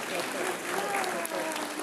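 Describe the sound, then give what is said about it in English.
An audience claps steadily, a dense, even wash of many hands clapping at once at a fairly loud, constant level for about two seconds. “You want some applause? There we go.”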